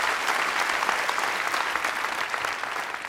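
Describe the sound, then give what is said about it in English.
Steady, dense applause from an audience interrupting a scientific lecture on base editing, many hands clapping at once in a continuous crackling wash that stays loud and even throughout, with no voices heard. “As an academic scientist in the US, I'm not used to being interrupted by applause.”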